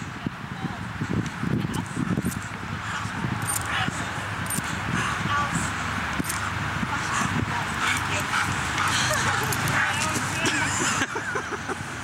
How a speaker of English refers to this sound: But I thought you'd think it's really cool to see a German Shepherd just take me down. It was a ton of fun.